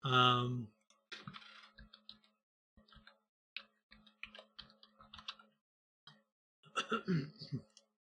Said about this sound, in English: I'm typing in here something so we can pull up Tommy.